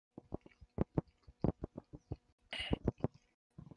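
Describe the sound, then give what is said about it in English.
Dice clattering and tumbling as they are rolled for character creation in a tabletop role-playing game, a quick run of sharp clicks and taps with a brief rattling burst partway through, then a few final knocks as they settle. “Let's roll some Billy dice.”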